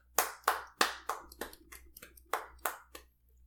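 Roughly ten sharp, crisp hand claps at a quick, slightly uneven pace, like a small group applauding briefly, over a low steady hum, with no talking.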